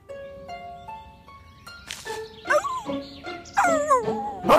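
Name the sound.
dog whimpering and barking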